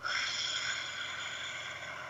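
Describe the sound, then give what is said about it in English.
A long, airy deep breath, in through the nose and out through the mouth, steady and drawn out for a couple of seconds with a soft hiss and no talking over it. “Let's breathe in through your nose. See how big you can make your belly. Out through your mouth.”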